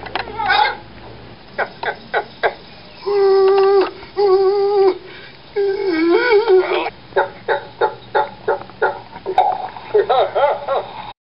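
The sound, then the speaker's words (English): A human voice imitates a frantic chicken with its head cut off, with rapid choppy clucks, drawn-out warbling squawks and more bursts of clucking, loud with no speech. “Here's an impersonation. The chicken with its head cut off.”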